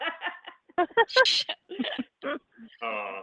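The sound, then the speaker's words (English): A single sharp sneeze bursts out, loud and breathy, among short voiced sounds and murmurs before and after it. “Bless you.”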